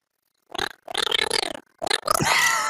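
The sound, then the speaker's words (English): A voice imitates a drowning cat with strained, gurgling wails in several bursts, rising and warbling in pitch, ending on a long, loud, rasping cry. “Drowning cat, there you go.”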